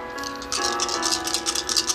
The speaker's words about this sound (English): I'm going to roll a number of times on a d20 just to see if he hits. I will announce if it's a hit or not, and we just need 5 hits for this to work. So I'm going to roll 5 d20 at a time.